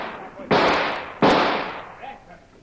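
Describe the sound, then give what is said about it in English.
Two loud, sharp blasts about three-quarters of a second apart as the lock of a locked door is blown open, each one a sudden crack that rolls off into a long, fading roar. “Stand back. I'll blow the lock.”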